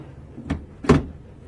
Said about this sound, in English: You won't mind if I close the door between us?